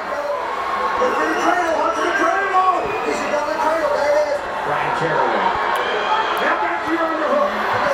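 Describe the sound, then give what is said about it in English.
A large arena crowd at a fight chants the fighter's name "Misha" together, a steady, continuous roar of many voices rising and falling in rhythm for the whole stretch, with no single voice standing out. “Now the crowd has changed their stance, and it's Misha and chant.”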